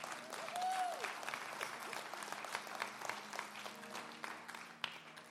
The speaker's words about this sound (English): Don't ever let a man put his hands on you. Oh, you can clap right there. That's a good time to clap.